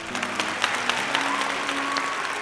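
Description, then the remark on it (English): A crowd at the Cottage Rest Inn applauds a bard's performance in a dense, continuous patter, with faint murmuring voices and a few whistles or tones beneath, at moderate volume. “Ah, looks like the bard has done it again. What a splendid crowd y'all have been.”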